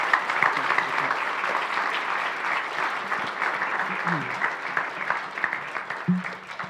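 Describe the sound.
Steady applause from an audience, a dense wash of many hands clapping at an even loudness for several seconds, with faint murmuring voices underneath.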